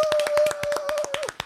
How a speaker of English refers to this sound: Go ahead and clap for her.